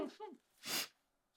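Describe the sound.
A brief voiced murmur, then one short, loud, breathy burst of someone blowing their nose, a hissing rush lasting under half a second before fading to quiet.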